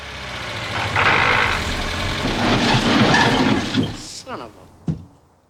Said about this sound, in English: I don't know why, and I turned around, and the car really stalled.